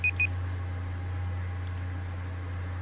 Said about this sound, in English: My 30-minute timer's going off.